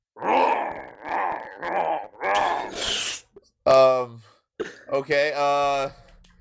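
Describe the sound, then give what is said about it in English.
A person imitates a lion over the phone during a mock on-air interview, with a run of loud, rough groaning growls, then shifts to a few strained, higher-pitched tonal moans, each burst separated by short pauses. “And I'm about to let you know, Lion is on the phone right now.”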